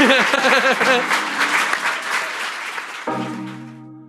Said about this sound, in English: Can we have a round of applause for everyone